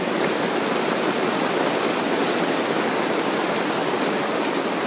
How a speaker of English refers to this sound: Wow. That is some rain right there. I got a little rain hitting me, so I'm going to step back.